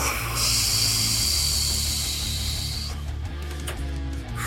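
Water pours into a glass in a steady, bright hiss for about three seconds, then stops with a few small clinks, over a low, droning musical hum and no talking.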